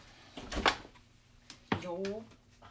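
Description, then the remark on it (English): A refrigerator's meat and cheese drawer slides open with a short scraping rush, followed by a sharp knock and a brief voiced sound from someone. “So, yeah, we are in the meat and cheese drawer.”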